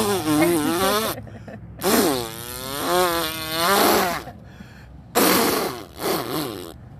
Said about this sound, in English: And that's a Mustang. Yeah, that's a 6-cylinder, dude. Did he chop his. Yeah, he wanted his car to fart.